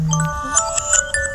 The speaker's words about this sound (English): see, that's my alarm too.